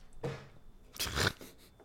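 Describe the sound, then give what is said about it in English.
A cat knocks something over and jumps down onto a garbage can: a short crunchy rustle, then a louder, longer crinkling crash a moment later, with no voices. “Lovely cat that just knocked over something.”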